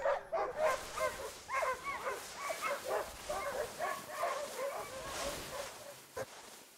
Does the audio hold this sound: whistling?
no